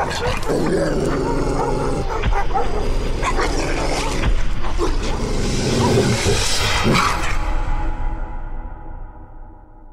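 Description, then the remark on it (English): A pack of dogs barks and yelps at once in a dense, overlapping, loud din, keeping up for several seconds before trailing off. “Why can't his man just show us the dogs?”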